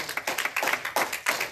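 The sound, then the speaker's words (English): A group clapping hands for the power of God in a fast, steady rhythm, the claps blending into a loud, continuous patter with no voices audible. “I said, if you believe that tonight, shout amen, which means so be it, and clap your hands tonight for the power of God.”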